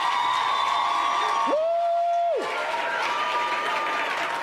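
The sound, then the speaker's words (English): A church audience stands and claps and cheers steadily to appreciate their pastors, with a loud sustained whoop rising briefly above the dense applause in the middle. “And we're going to clap hands and appreciate our pastors.”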